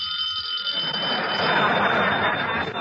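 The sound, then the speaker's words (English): The telephone at Mr. Benny's residence rings in one continuous, high metallic bell trill lasting the whole moment, while a broad rushing noise swells up underneath after the first second. “Pick up the phone!”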